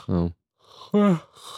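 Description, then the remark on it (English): A voiced yawn: a drawn-out, groaning breath that rises and trails off, followed by a second breathy vocal stretch, with no speech around it. “Cut away this yawn.”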